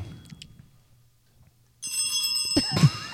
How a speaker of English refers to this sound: I get church bells.